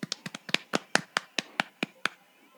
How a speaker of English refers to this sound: Don't ask these white people to clap in rhythm. That shit'll get fucked up in 2 seconds.